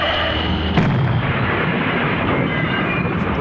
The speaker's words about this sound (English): That was a car wreck from the future.